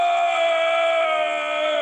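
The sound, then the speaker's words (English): A loud, excited yell held on one steady, strained pitch for nearly two seconds, ringing out alone without any other talk. “Sorry, I didn't mean to yell on that one.”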